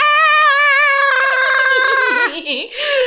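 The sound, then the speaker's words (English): A voice does a shrill, warbling parrot squawk, loud, holding a strained high pitch for about two seconds before it breaks into choppy, cackling bursts. “We are back at the penthouse with the parrot. And the parrot says, hello, Jim.”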